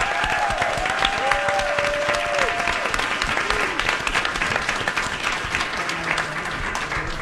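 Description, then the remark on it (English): Loud, sustained audience applause with dense clapping filling all seven seconds, and a few sliding whistles or whoops rising out of it near the start. “I want the loudest applause for them because they're just amazing.”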